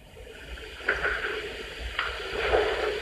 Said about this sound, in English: Send a knock outside. It sounded like it was in the hallway, or?